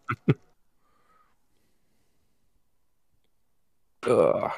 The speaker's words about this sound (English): That dice on the floor. Okay. Stop dropping dice, couple fails.